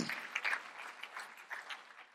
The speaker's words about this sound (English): As you've been seated, put your hands together and clap unto the Lord.